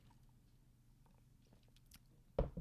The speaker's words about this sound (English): Sorry, taking a sip of water.